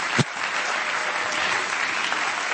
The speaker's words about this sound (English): Come on, clap your hands to the Lord right now and give Him praise.